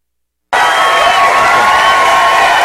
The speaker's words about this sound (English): All right. Can I get an applause there or anything on that?